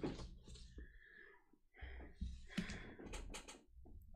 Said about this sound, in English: I hope you're enjoying all the paper shuffling and pencil scratching you're hearing at home.